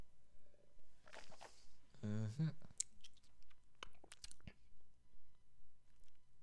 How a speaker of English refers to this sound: Let's take another sip.